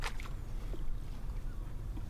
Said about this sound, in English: We just cut to y'all in this old dinghy just going across the water. And so you're trailing across the water, making all haste out.